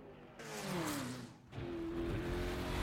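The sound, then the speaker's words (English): A high-performance sports car engine revs hard, its pitch sweeping up and falling back before a second sustained rev, loud and close with no one speaking. “even though you said it's a $500,000 car, he does not give a fuck. Like, I'm going to drive the piss out of this.”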